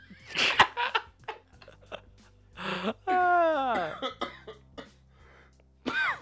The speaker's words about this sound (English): Yo, you cough a little too hard, you gotta cough.